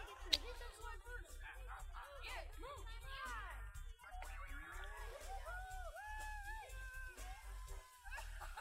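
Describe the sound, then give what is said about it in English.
Excited voices yell and shriek with delight, overlapping in a continuous stream of rising and falling cries over a steady low rumble, with no clear words. “The subtitles say gleeful yelling.”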